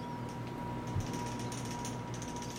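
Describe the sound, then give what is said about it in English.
A plastic cap is pressed and snapped onto a bottle spout, giving a few soft, quick clicks over a steady low background hum, with no one talking. “Make sure that one snaps on pretty good.”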